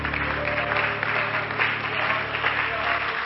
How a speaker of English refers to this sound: Amen. Let's give the Lord a good hand clap of praise tonight.